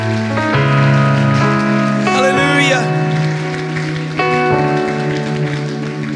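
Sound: audience clapping hands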